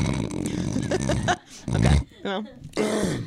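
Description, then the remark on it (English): A person imitates snoring with a few rough, raspy, grunting breaths in quick succession, loud and growly, with brief pauses between them. “You don't actually snore like that, right?”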